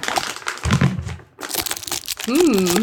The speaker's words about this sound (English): Hold on, let me open my jar of peppermints.